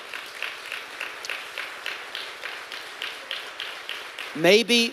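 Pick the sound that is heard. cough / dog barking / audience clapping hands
audience clapping hands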